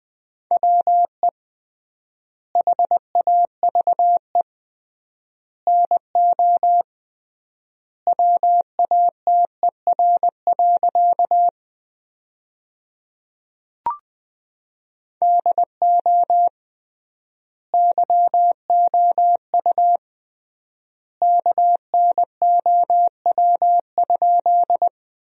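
Morse code at about 20 words per minute with triple word spacing, sending sentences built from the 100 most common words: a steady mid-pitched tone keyed into quick dots and dashes, grouped into words with long pauses between them, plus one brief click partway through.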